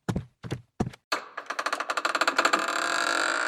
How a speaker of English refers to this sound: A mouse can knock louder than that. I almost broke your fucking door down. I was banging so hard.